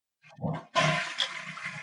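A toilet flushes: a brief low gurgle, then a sudden loud rush of swirling water that keeps churning steadily to the end, with no voices.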